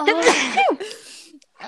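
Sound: sneeze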